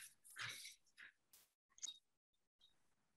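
A corgi named Jasper whimpers and gives short, yappy barks in a few quick bursts, fairly loud, with brief pauses between, mixed with some wet chewing and squishing noises and no talking.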